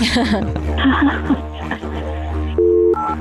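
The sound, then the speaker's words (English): A phone number is dialed to call a man, with brief steady electronic tones near the end. Before them, a muffled voice-like sound runs over a constant low hum. “All right, I'm going to dial his phone number right now.”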